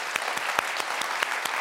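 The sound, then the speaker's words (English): A crowd applauds to show who is into vintage shopping, a steady wash of many hands clapping at once with a few sharper claps standing out at a regular beat. No one speaks over it. “Clap of hands, who's into vintage shopping?”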